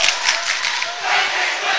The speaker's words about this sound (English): Obviously, the student section doesn't like that one.